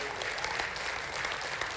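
An audience claps hands one more time to affirm belief in a prophecy, a steady, dense burst of applause, a continuous crackle of many overlapping claps at even loudness throughout.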